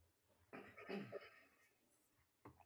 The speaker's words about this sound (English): That's not a Corona cough, is it? No. Okay.